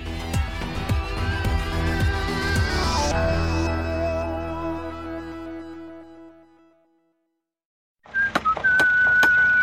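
A builder whistles a short, clear tune as he works, after a brief silence, preceded by a burst of rising electronic music that fades out.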